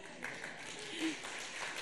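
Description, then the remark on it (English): An audience claps together in a steady, dense patter of applause that holds at an even, moderate loudness for a couple of seconds with no clear voices on top. “You can clap if you like.”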